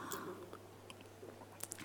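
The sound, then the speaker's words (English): Quiet sipping of water with soft wet mouth sounds and a swallow, ending in a couple of sharp little clicks over a steady low hum, as a speaker pauses a Bible talk for a drink. “Now I'm going to have a wee drink.”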